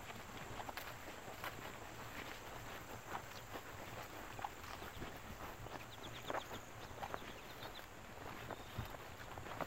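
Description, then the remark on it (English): Footsteps of people strolling outdoors on a beautiful day in Ohio, a steady uneven patter of soft crunching steps that runs throughout, with a brief series of faint, high chirps partway through. “Lovely day for a stroll.”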